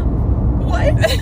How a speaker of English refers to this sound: Oh, car. These people drive like idiots in Georgia.